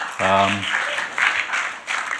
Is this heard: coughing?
no